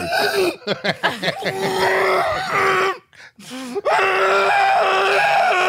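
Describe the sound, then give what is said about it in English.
A voice imitates someone screaming underwater: a drawn-out, wavering, gurgly wail with stuttering bursts at the start, a brief break midway, then a loud, sustained, strained yell, unaccompanied. “That's just how do you scream underwater?”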